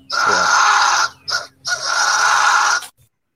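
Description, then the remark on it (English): A fisher cat call: three loud, harsh, raspy screeches, a long shriek, a brief broken one, then another long one, with no talking. “Oh, the fisher cat. It definitely wasn't that, because that sounds like someone's blowing to a straw.”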